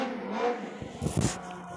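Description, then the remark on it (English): A motorcycle engine revs outside at 12:39 at night, a loud throaty surge that swells and sputters for a second or two, with no one talking. “Man, this person, this motorcycle outside, just stop and just go. Just drive away.”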